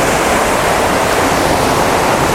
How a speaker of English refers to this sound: Kilt Rock is a cliff waterfall, comes off the cliffs on the top of the Totternish Ridge, and it's one of the biggest waterfalls in Europe. I think it's the biggest one in Scotland. It's massive.